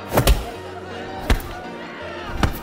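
Four heavy, dull thuds of kicks landing on a body, two in quick succession, then two more spaced about a second apart, over a steady low background murmur.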